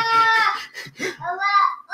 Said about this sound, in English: His daughter is yelling. Yes, she is.